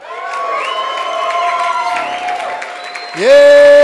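An audience shouts praises to God all at once, a loud overlapping wash of many voices with sustained tones, rising to an even louder burst of voices near the end.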